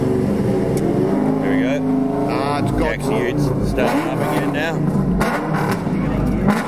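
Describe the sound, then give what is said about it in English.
The loud engine of the Osgood Fisher race ute roars steadily as it pulls out of the pits, droning and rising in pitch, with voices talking over the noise throughout. “Well, that's the Osgood Fisher Ute finally out of the pit. If you weren't awake, you are now.”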